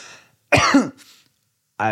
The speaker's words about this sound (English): coughs from the other end of the table.